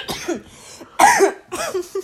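Three harsh, loud coughs coming in quick succession with brief pauses between them and a rough, throaty edge.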